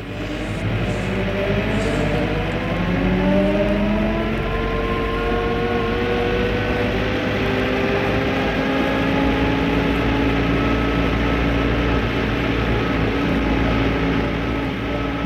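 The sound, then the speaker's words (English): A truck engine runs loud in Piccadilly, a deep continuous rumble whose pitch drifts up and down as it revs, with no voices throughout. “It was the vibration of the truck, I suppose.”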